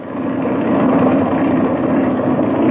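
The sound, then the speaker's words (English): A steady, droning airplane engine idles as it warms up with the throttle cracked open a little, a continuous mechanical rumble that holds an even pitch and loudness throughout without any speech over it. “the engine's warming up”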